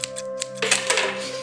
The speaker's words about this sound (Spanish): Esa es una pluma cayéndose en el teclado de la compu con la que grabamos.